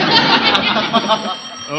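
A telephone bell rings in one loud, continuous metallic trill that rattles steadily for nearly two seconds.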